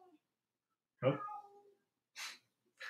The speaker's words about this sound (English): Sorry, my cat is having an issue. I'll get to you in a second.